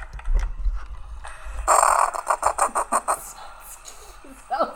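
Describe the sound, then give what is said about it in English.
Brush-tailed possum calls: a loud, harsh grating burst runs straight into a rapid string of about eight rhythmic, throaty rasps. A brief rising squeak follows after a pause. “Oh, these are brush-tail possums.”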